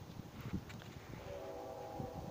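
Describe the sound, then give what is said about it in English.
A Metrolink commuter train, number 329, at Baldwin Park Station, heard from aboard car 220B, rumbles low and steady, then a sustained horn-like tone rises partway through and holds to the end, fairly loud, with no one speaking. “The Metrolink train number 329, where I am seated on car number 220B, as in boy, arrives at Union Station at 1:16 p.m.”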